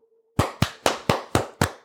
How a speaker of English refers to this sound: Man, y'all cut that applause shit, man.